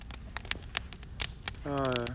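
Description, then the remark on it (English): Irregular sharp pops and snaps of a campfire by a lake crackle during a power blackout, with embers flying, scattered over a soft background hiss; near the end a voice starts speaking over the crackling. “I don't know if you can hear the fire crackling.”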